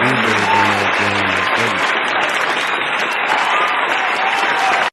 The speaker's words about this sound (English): And he's the first rapper to ever receive that award. And I feel like that's dope, man. Give him a little, a little applause for him.